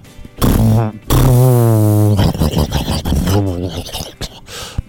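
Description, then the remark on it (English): A voice imitates a bubbling jacuzzi with a loud, sputtering mouth sound, a long buzzing drone that breaks into choppy gurgles and bursts. “He's like trying to get started, but then that was it was a jacuzzi.”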